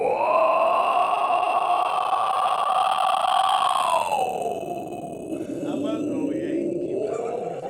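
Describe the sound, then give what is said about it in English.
A long, continuous inhaled vocal growl, an inward growl attempted on request to be as long as possible, rough and raspy, holding steady for about four seconds before dropping lower in pitch and continuing for several more seconds without a break. “Do the longest inward growl that you can right now.”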